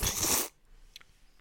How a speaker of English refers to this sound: And then this is me slurping it up.